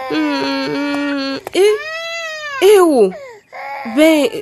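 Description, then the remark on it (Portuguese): A baby cries loudly in several drawn-out, wavering wails with brief catches of breath between them, rising and falling in pitch, as the baby boy is rocked by his mother in a house on a narrow street in Nguva. “Ao aproximar-se da casa, numa rua estreita, Tampa ouve o choro de um bebê.”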